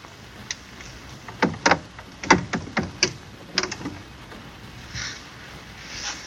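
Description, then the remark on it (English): A chisel scrapes and knocks against the wooden door of a cell in a quick, irregular burst of about eight sharp strokes, followed by quieter rustling and a faint hiss. “Let's do, yeah, we'll do the wood chiseling on the door.”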